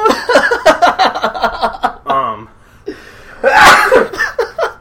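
A loud sneeze bursts out near the end, preceded by breathy, stuttering laughter and a short voiced groan as the sneeze builds.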